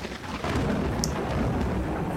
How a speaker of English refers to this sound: A little thunderclap for you. A little thunderclap.